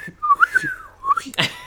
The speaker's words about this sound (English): I'm going to make your whistle sound super breathy and pathetic. Like the kind of whistles you do sucking in air because you can't do it the other way.